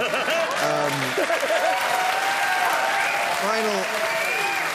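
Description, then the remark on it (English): Steady, dense applause from a large audience fills the whole stretch, with a voice briefly breaking through over the clapping a couple of times. “Don't applaud.”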